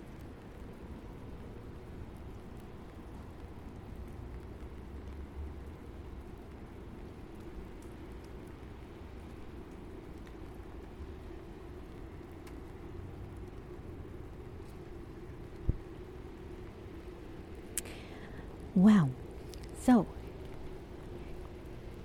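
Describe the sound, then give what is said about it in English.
Steady rainfall in Toronto makes a constant, even hiss with a low rumbling undertone. A few sharp ticks break through, and a man speaks a couple of brief words near the end. “It is raining, so just enjoy the nature sounds.”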